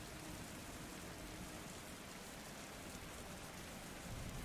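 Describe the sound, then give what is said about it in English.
Steady rain falls and patters on surfaces, a dense, even hiss that continues without a break and stays fairly soft throughout, with no voices present. “But the rain continues to fall around you.”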